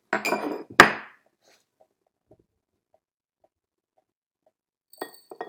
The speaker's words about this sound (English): So to compare these two teas, we're just gonna open up the teapots.